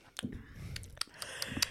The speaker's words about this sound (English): Second sip.